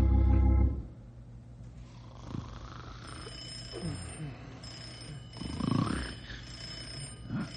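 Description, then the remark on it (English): A loud, brief burst of a telephone ringing opens, then cuts off, leaving a quiet background with faint, muffled voices and a thin high-pitched whine. “Yeah, I'll get the phone.”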